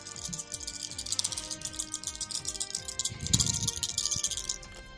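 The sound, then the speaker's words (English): Dice rattle and clatter in a rapid, continuous run of sharp clicks for about five seconds, with a louder tumble partway through, rolled for an acrobatics check in a tabletop game. There is no talking. “Need one of those dice cups.”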